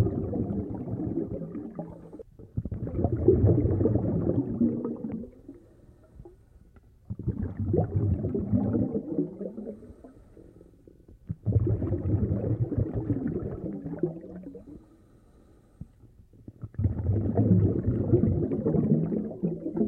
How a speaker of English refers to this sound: In the following sound file, the composer uses low pitches of harmonium, played with the bass foot pedal keys of the instrument, then pitch shifted, to create the underwater atmosphere.